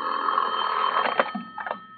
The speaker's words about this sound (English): I propped myself up in bed with a magazine and was almost asleep when my phone rang.